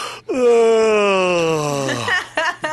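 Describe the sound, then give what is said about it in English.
A man's voice acts out one long, loud yawn, imitating a young man yawning in someone's face at a Santa visit: a drawn-out moaning tone that slowly slides down in pitch before trailing off, followed by a couple of short breathy sounds. “He's yawns in my face.”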